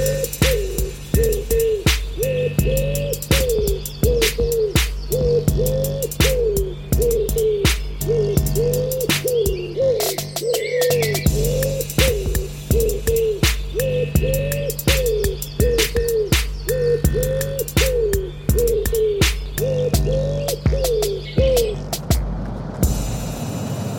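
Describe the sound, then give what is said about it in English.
Wood pigeon-style coos repeat in a steady, looping rhythm for about twenty seconds, set over a low sustained drone and sharp rhythmic clicks, like a short musical jingle, with no talking. “That was just a bit of bird bants there before that wood pigeon jingle.”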